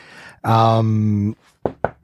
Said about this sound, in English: Knock on wood. Cause I don't want to lose it.